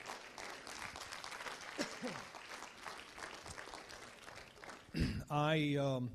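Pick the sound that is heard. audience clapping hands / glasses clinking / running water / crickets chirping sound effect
audience clapping hands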